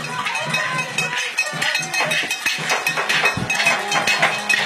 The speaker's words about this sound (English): Man, this crowd, they have been just making noise from the first pitch on. Just intense. You got to give credit to Kirbyville, their fans, this home field. But yeah, give credit to the Lady Dog faithful.